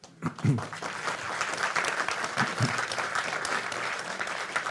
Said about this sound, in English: You've got an applause.